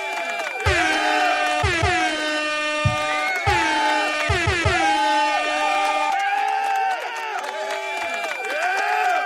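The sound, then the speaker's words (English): A loud, continuous burst of crowd cheering celebrates a caller's news of his first child, a healthy baby boy. Rising and falling whoops and horn-like blasts ride over a few low thumps, filling the whole stretch without a break. “I can't hear you, Scott. You're getting an applause.”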